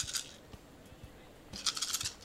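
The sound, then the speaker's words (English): Two quick bursts of dice clattering and tumbling across a table next to a dice box, with light knocks between them, fairly quiet, with no talking. “I'm rolling next to my dice box.”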